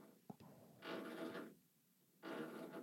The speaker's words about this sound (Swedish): Så här borrar ingen riktig människa. Nej, nej. Så känner du bara på betongen med... Det är som att någon borrar i väggen och är rädd för att det ska bli hål.